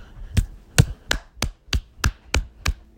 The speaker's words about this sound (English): I'm clapping right now. Applaud the NBA for the job they've done with this bubble.